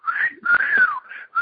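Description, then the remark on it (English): A clear wolf-whistle catcall from a man at someone walking by: a few loud, breathy whistled phrases that swoop up and glide back down, with brief gaps between them and no talking. “You walking by, some dude do the cat call whistle”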